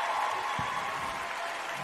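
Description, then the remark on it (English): A crowd applauds in tribute to Bray Wyatt (Wyndham Rotunda), a dense, steady wash of clapping that holds at an even, moderate loudness for the whole moment, with no voices rising above it. “And like I said, it just seems appropriate for us just to give him, you know, one more round of applause, man.”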